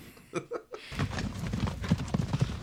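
Horse hooves clip-clop in a quick, steady rhythm, a string of sharp hollow knocks at moderate volume, with no voices over them.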